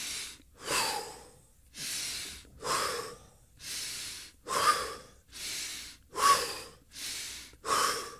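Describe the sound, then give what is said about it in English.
Rapid, forceful breathing exercise done to a five count, in a steady rhythm, with sharp, noisy inhales and exhales alternating about once a second for several cycles, loud and breathy with no talking. “The release technique and then the rapid breathing.”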